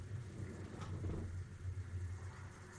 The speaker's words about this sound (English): Ooh, it's thundering bad out there.